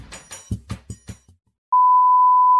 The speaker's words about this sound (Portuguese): KKKK, durante a gravação terão sons de notificação do Skype porque tentaram evitar erros. E isso foi um erro.